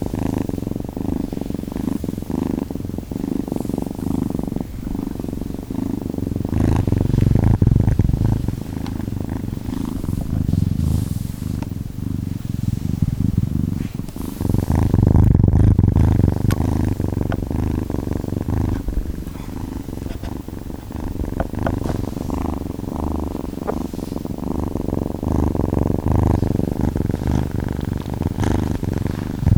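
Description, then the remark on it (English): Steady purring from kittens, recorded in stereo: a low rhythmic rumble that continues throughout with slight swells in loudness, heard alone without any talking. “That was kittens purring in stereo.”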